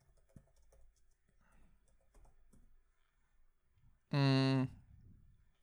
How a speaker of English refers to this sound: You hear me typing away over here?